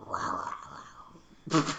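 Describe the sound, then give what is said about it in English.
A person lets out a low, rough growl imitating a tiger. It rumbles for about a second, and a short, louder raspy burst follows. “That's why you were like growling earlier. Because you're deep down, you're a tiger.”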